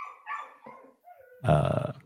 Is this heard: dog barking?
yes